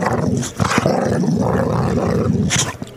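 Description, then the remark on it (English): Basil, a boxer dog, growls loudly and continuously during play, a rough rumbling snarl broken by a few sharp huffs and snorts, with no one talking. “I was able to take my wonderful dog, Basil the Boxer, out there. And then he played a little bit.”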